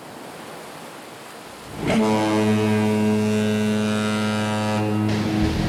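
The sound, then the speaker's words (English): A steady rush of ocean surf washing ashore, then a loud, deep ship's horn blasts over it for several seconds. No one speaks. “Making waves.”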